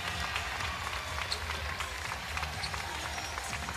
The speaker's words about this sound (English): Fans applauding an interview that Desmond Bain had done a little earlier.